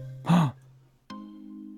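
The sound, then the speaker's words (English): A single sharp, breathy gasp from a person lying at someone's feet in a sewer, a quick voiced intake of air, followed by a low steady hum. “You hear a gasp at your feet there.”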